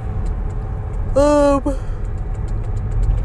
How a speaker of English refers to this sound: I feel like that's like my fifth yawn.